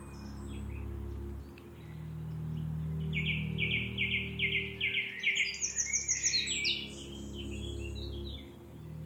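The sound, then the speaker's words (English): A song thrush sings loud, clear, repeated phrases, each note group sounded several times before switching to a new, higher phrase, with a wren singing alongside, over a steady low rumble of background noise. “Song Thrush very loud and repeats each phrase. Then chooses another phrase.”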